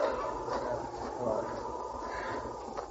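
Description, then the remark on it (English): A pack of Malamute sled dogs barks and yips in a steady, overlapping clamor, with a few sharper bursts standing out over a constant noisy background. “Ho, you Malamutes! Ho! Ho up there!”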